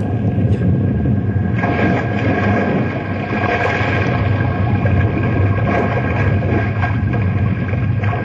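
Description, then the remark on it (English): An iceberg cracks and splits in two after a gunshot, a long, loud, continuous grinding rumble with churning water, filling the whole stretch without pause and with no voices. “This here iceberg is cracking in two.”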